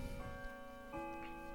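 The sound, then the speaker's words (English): A grandfather clock chimes, its sustained bell-like tones ringing steadily over a soft, regular ticking. The sound is moderately loud, with no one speaking. “Excuse me, that's a grandfather clock there.”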